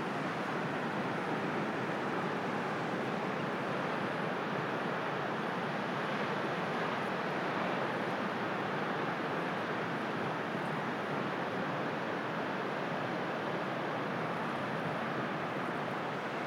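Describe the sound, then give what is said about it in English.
Steady roar of sea waves breaking on a shore, a dense continuous wash of surf with no voices, the rush swelling and easing slightly throughout. “So I'm going to leave you with the song of the sea.”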